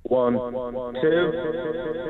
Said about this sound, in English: Give it a bit now, we could put a bit of echo on it. Go for it. Take it away.